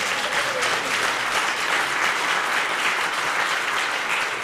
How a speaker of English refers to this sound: So if you don't know, recently Rebecca extracted her first baby. And so, give you a round of applause.